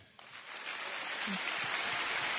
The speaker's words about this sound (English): Audience clapping at this prominent Christian megachurch.